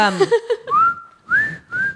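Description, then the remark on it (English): A few quick hummed notes lead into a person whistling a short tune in three clear, sustained phrases, imitating how pet cockatiels whistle a TV show's theme song. “They can whistle the theme song to the Andy Griffith Show.”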